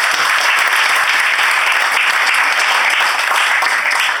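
Steady, loud applause from an audience, a dense wash of many hands clapping without pause for a few seconds, with no voices standing out above it.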